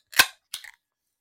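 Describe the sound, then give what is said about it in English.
A drink can pops open with a sharp, crisp crack, followed a moment later by a short burst of fizzing hiss, with no talking. “3, 2, 1, crack.”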